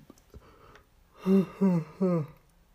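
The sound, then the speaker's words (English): A person yawns aloud, a voiced, drawn-out sound broken into three short swelling pulses, fairly loud against a quiet background. “Oh, yawn it. Excuse me.”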